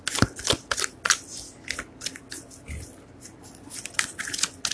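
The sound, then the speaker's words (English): Crisp, papery riffling and flicking of a deck of tarot cards being shuffled for a reading, a quick irregular run of soft snaps and rustles with no voices. “Two cards just flew out, but I'm gonna keep the shuffling.”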